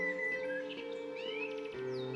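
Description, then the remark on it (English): Fluty, whistled blackbird song phrases with quick rising and falling chirps, heard clearly over a steady, sustained musical drone that continues throughout. “I am a blackbird, and my gift of song can heal hearts and raise spirits.”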